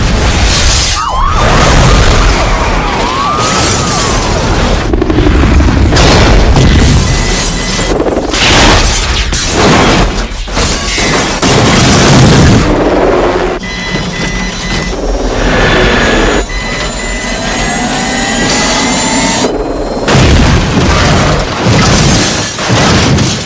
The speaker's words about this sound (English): halfway through this movie is a nuclear explosion happening in a major American city